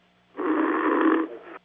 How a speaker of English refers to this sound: Should be an Olympic sport. Medal winner. He never quits a phone call. He stays and snores right through the phone.